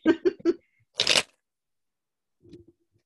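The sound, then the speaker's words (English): A deck of cards being shuffled: a few quick papery flicks, then one short, dense riffle burst, followed by faint soft handling sounds. “I'll just do one more shuffle. I'm not very great at shuffling.”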